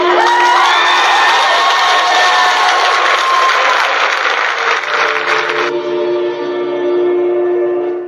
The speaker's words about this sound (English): was that a cheer for Hitler? That was a whoop and then a cheer.